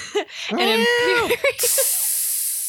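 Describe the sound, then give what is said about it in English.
A can of Laser Cat, an Imperial IPA from Medusa Brewing Company of Hudson, Massachusetts, cracks open into a steady, loud hiss of escaping gas that lasts over a second, right after a short, warbling voice-like sound. “Well, this week we are cracking open Laser Cat.”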